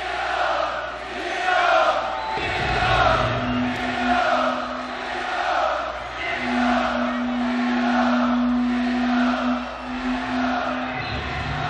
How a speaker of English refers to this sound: So in between songs, crowd is just nuts.